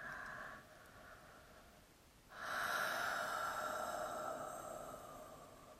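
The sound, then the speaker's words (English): A big, drawn-out yawn taken during a guided somatic relaxation: a soft breathy intake swells into a long, loud, voiced exhale that slowly fades, with no talking. “And then we can take a nice big yawn together, just allowing the somatic body to surrender.”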